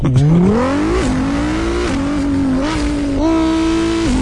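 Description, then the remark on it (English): A voice imitates a Pagani Huayra supercar engine revving, a loud buzzing drone that climbs in pitch, drops back and climbs again through several gear-shift-like steps, held continuously without pause. “Pagani Huayra.”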